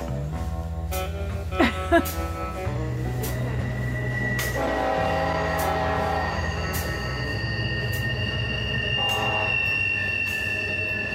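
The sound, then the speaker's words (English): A train rumbles past in the town of Kermit, West Virginia, its wheels squealing in sustained high-pitched screeches over a steady low rolling roar, with a couple of sharp metallic whines near the start. “There's your train coming.”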